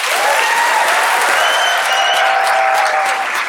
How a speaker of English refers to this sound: And as soon as he stepped on stage, the crowd gave him a greeting of a lifetime, a standing ovation he will always remember.